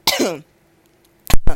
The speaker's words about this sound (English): You know, a little cough there.